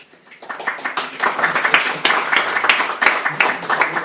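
A crowd applauds steadily, many hands clapping in a dense, crackling wash that swells after a quiet start and holds at a lively level for several seconds.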